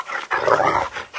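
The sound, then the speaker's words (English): A dog growls and barks in a short, agitated burst that swells and then tapers off, with a brief yelp at the end and no one talking. “Hey, your dog's a psycho.”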